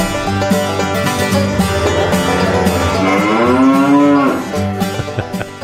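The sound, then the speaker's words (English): A single long, loud cow moo swells and bends in pitch over a couple of seconds, rising out of a steady, droning background with no talking. “Oh, I got a cow story in the pile, too.”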